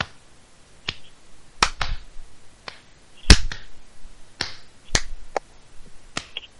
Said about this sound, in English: My hands are getting sore clapping for you.